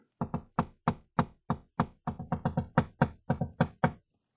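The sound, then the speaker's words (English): Sharp knocks rap out Morse code on a window in an uneven pattern, about sixteen taps in short clustered bursts and single beats, loud with no talking. “And so he starts knocking Morse code on the window.”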